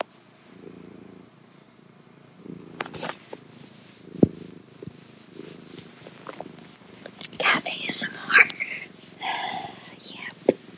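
A male cat named Kitty purrs, a low steady rumbling that continues throughout, joined later by rustling, handling noises and soft breathy sounds.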